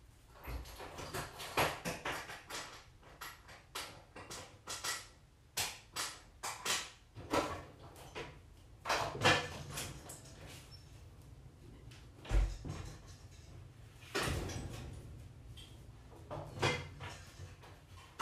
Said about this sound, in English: Nobody likes dead air, and nobody likes some guy moving around his chairs trying to get a bug out of his house.